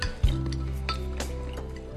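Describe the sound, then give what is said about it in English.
Noisy eating at a dinner table: utensils clink and scrape against dishes in scattered bursts, over a steady low droning hum. No one speaks. “But goddamn, are they eating so loud?”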